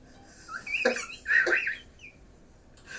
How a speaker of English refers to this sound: I got that wheezing cough, baby. Fucking 30s.